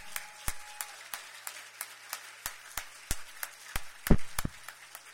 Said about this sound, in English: One more round of applause for our mayor. Thank you.